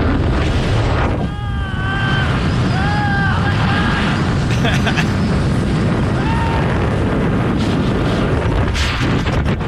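A skydiver's freefall: a loud, steady roar of rushing wind buffets the microphone throughout, with a few brief rising-and-falling whoops from a voice near the start and again midway.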